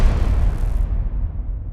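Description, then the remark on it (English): A loud, deep explosion sound effect depicting the Big Bang, the beginning of the universe, rumbles through the whole moment, its bright crackling top fading halfway while a heavy low roar keeps booming on. No voices are heard. “I'm talking about the beginning of the universe, the time where time itself was created. The Big Bang.”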